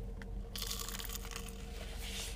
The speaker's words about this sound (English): Now, the crispness of these fries here, they have a phenomenal crisp here. They really do. No, each bite is really like... let me just give you guys a little little taste, a little sound bite of this fry here.